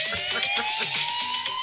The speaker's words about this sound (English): You can't not dance to this. The ambulance siren.